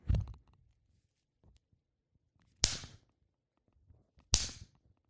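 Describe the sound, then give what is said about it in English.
A leather belt is snapped taut twice, each a loud, sharp crack followed by a brief rattling decay, spaced about two seconds apart after a softer thump at the start. “They take the fucking belt and then they lapse that bitch.”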